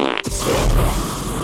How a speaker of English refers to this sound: So essentially, he could fart fire.